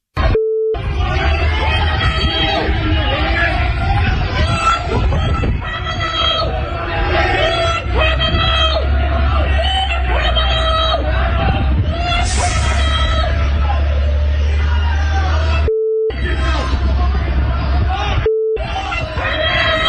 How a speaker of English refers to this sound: Poor Hillary heckled, booed outside of Queen's University in Belfast as she attended a ceremony installing her as the college's first female chancellor. Anyway, calling her a war criminal.